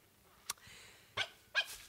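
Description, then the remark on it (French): A dog sniffs at a rock in short, breathy bursts, about four quick snuffles spaced unevenly over two seconds, with faint background hiss in between. “Eh bien, qu'est-ce que tu as à renifler ce rocher?”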